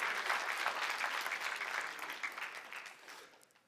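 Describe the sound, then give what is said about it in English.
An audience giving God a round of applause: dense, steady clapping from many hands, loud at first and gradually fading toward the end, with no voices standing out. “If you can say so, give God a huge shout and a round of applause.”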